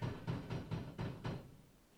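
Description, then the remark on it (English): A quick series of about six sharp knocks in a steady, fast rhythm, fairly loud, then stopping and fading into quiet room tone. Sounds like rapping on a door; no one speaks. “Yeah, that sounded more like somebody knocking on your door.”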